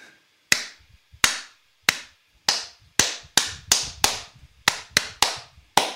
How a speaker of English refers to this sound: Was that an eight? That's an eight clap? Yeah. That sounds like more than eight claps. Is that enough claps to cover the spread?